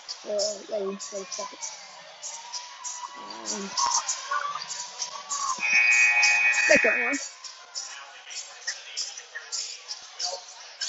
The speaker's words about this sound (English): And there you go. First buzzer went off.